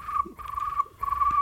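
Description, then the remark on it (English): A frog croaks in three trilling bursts, each a steady, buzzy call with brief gaps between. It is clear, with no talking over it. “That was a frog right there.”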